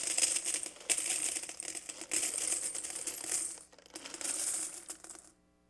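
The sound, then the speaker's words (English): A steady stream of coins pours into one of the trumpet-shaped offering receptacles in a church, with dense, bright metallic clinking and jingling. It briefly thins out partway through, then surges again before stopping abruptly. No voices. “In fact, some of them would pay to have multiple couriers bring in their wealth, their haul from all of the other widows in the land, into the church, and they would slowly, in one of those trumpets, begin to pour that out.”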